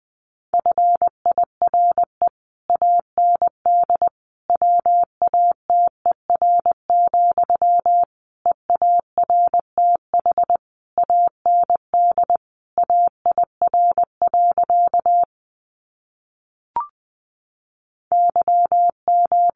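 Morse code at 20 words per minute, sending practice sentences built from the 400 most common words: a steady mid-pitched tone keyed into quick dots and dashes, grouped into words with short gaps and one longer pause near the end.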